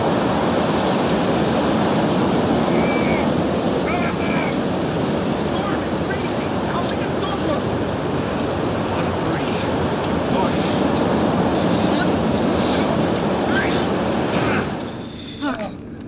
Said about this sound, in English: Wow, that spiked the transmitter's recorder hard. Wait, static.